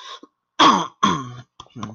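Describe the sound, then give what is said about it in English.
A loud throat clearing in two strong rasping bursts, followed by a softer short grunt, with brief quiet gaps between them and no talking. “Also, I have to clear my throat right now.”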